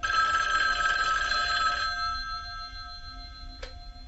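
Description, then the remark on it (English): A loud telephone bell rings in one sustained burst for about two seconds for a bedroom phone call scene, then its metallic ring fades away, followed by a single sharp click. “Deborah asked Jamie to do her side of this bedroom phone call scene where Laurie talks to her friend Annie.”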